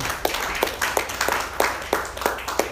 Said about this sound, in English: But I just want to applaud you guys. I just want to applaud Grape Top Church. Yeah, give yourself a hand.